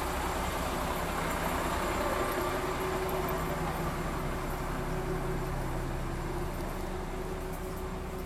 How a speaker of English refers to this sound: okay, we're passing a loud truck. Hold for truck.